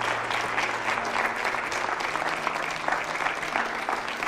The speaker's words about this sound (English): Come on, let's clap your hands and thank the Lord. Clap your hands, clap your hands. Come on, clap your hands.